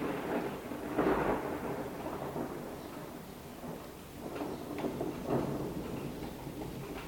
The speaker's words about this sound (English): And it's just started to thunder, so hang on.